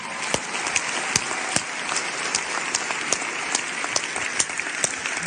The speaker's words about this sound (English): Can we give a round of applause for the cast and crew that have worked so hard to bring this to us today?